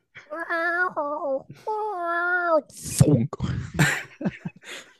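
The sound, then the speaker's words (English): A voice imitates a cat with two long, wavering meows, followed by a burst of noisy, breathy vocal sounds. “I got Mrs. Henderson's cat right here.”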